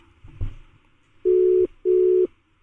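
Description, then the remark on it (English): A telephone ringback tone heard down the line: two steady electronic buzzing bursts in a quick double-ring pattern, clear and fairly loud, after a faint low thump. “Okay, it's ringing.”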